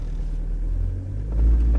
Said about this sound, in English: So let's accelerate again